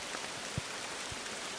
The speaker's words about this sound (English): So that's the day we decided to come out to the river. It's actually quite atmospheric even in the rain, isn't it?